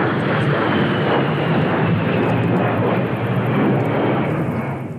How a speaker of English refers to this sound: The A-10 Warthog is a loud jet fighter plane.